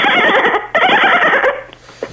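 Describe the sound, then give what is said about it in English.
A person imitates a dolphin: two loud, shrill, chattering squeals back to back, each under a second, then a brief faint squeak at the end. “But he got you to do a dolphin noise.”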